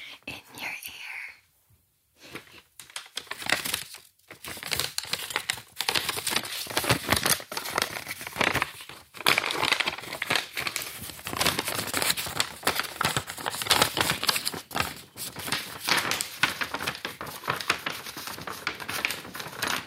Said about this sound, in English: So you can do a bit of like paper scrunching, are you? I'm going to do some paper scrunching.